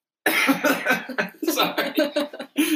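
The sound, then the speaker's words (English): A loud fit of coughing, a rapid string of harsh, raspy bursts running together for a few seconds with barely any pause between them. “And then there's like the way it was, like she was wearing it was like, cough.”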